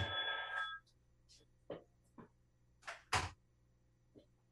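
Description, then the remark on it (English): A phone rings with one short, bright electronic trill at the start, then cuts off, followed by a few brief, scattered bursts of voice and soft knocks. The phone had been left on rather than set to Do Not Disturb. “I did not realize that was on. I apologize. I should have put that on right. Disturb.”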